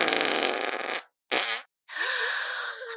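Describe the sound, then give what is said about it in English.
Three loud, rasping fart sound effects in quick succession: a long blast, a short sharp one, then another drawn-out rumble, separated by brief silences, with no talking. “let fly a great and terrible and extremely noisy fart.”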